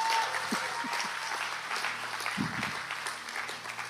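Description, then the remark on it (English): A crowd applauds steadily, a dense wash of many hands clapping throughout at moderate volume, with no one speaking. “Now you can clap. It's okay.”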